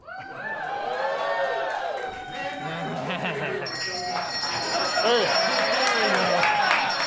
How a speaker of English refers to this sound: Hey. Is that a St. Paul bell?